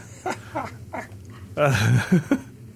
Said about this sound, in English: Hey. What the hell is that? Dog, are you okay? It's our guard dog. We have a little Chihuahua guard dog here. At the okay, well, that dog's bark sounds like your spleen just exploded.